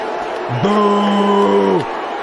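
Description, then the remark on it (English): A crowd boos as Dave Chappelle brings Elon Musk on stage: one long, low, steady boo holds for over a second and then falls away, set against continuous crowd noise. “Does that sound like 98% of the people cheering for him?”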